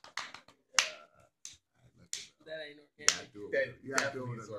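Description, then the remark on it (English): Several sharp, loud claps ring out at irregular intervals, a quick cluster at first and then isolated single claps, with people talking over the later ones. “Organic clap, but you're supposed to clap, guys.”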